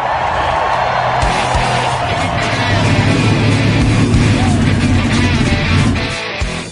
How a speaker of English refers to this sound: Motors! Start your engines!